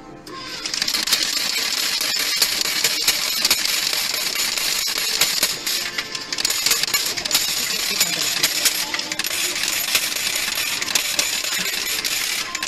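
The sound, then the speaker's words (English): A continuous cascade of coins clinking and jingling as they pour down, dense metallic chimes tumbling without pause for the whole stretch, bright, with no voices. “Those coins just keep dropping.”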